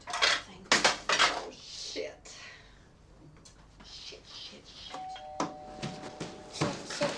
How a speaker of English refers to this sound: And the mum's trying to put a makeup on. And the daughter's in there trying to, she's putting makeup on her face as well. I love this bit, though, where the mum drops all her makeup.